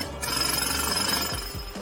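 A loud, continuous jackhammer pounds away at about 90 decibels, its rapid hammering blurring into a harsh, steady roar with a thin metallic whine riding on top.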